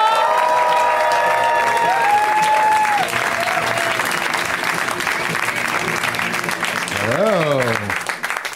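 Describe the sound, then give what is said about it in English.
Loud, sustained audience applause at a comedy show as the first comedian, Pete Hall, is called to the stage: dense clapping mixed with scattered cheers and whoops, a couple of voices rising above the crowd before the clapping begins to thin at the end. “Give it up for Pete Hall.”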